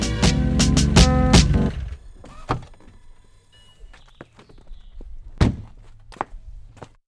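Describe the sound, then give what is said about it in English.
A loud, pulsing sports car engine cuts off abruptly, followed by a solid car door thunk as the driver gets out of the vehicle, and then two heavy footsteps spaced apart in the quiet. “cuts the engine of his sports car, gets out of the vehicle, and takes 2 steps before the album ends abruptly.”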